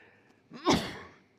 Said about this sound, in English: That's got to be the smoke. I think in 35 years I've never sneezed in a sermon. That's amazing.